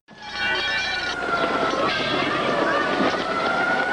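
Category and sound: signal or alarm, foghorn blast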